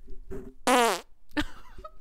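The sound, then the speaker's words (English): A loud, sputtering fart, made with the microphone held right up to the buttocks, blasts for about a third of a second, its pitch sliding down, with a few softer rumbling bursts before and after. “I've got a fart right in the chamber. Would you like me to fart into the mic?”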